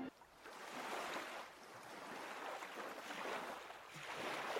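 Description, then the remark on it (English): A motorboat, the Fidelity, moves across the water, a steady rushing wash of spray and hull noise that swells and eases in slow surges, with no voices. “This is actually one of the boats here.”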